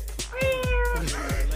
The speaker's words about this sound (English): You gonna meow?